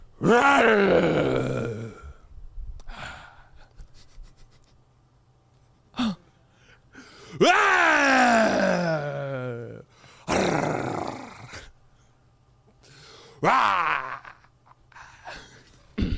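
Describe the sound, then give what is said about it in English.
A man's voice imitates a lion's roar several times: long, strained, growling bursts that rise and fall in pitch, loud and harsh, separated by short pauses and a low steady hum. “You have to give an adequate roar to stay alive with us.”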